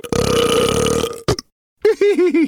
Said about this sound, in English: Gorilla let out an especially loud burp.